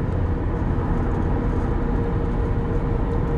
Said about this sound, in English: That's why you hear loud car noises. Yeah, actually, no, it's just a simulation. We just added these car noises in, like, just to trick you guys.